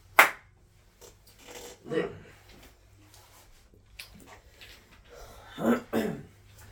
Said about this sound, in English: Clap.